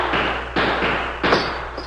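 Three loud gunshots crack out about half a second apart, each with a harsh, ringing tail. The last shot smashes a lamp on a table, giving it a brighter, shattering edge.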